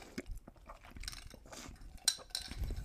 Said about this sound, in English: Okay, let me have a sip. Give me a second.